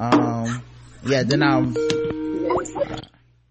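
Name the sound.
telephone dialing tones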